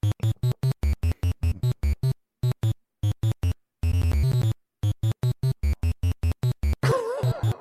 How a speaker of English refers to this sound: We should play it here, because the fact that this is the only track that you have in the entire game is, it's just so mind-numbing.